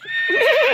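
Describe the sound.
A person imitates a horse's whinny: a single loud, quavering call that wobbles up and down in pitch for under a second, with no other talk.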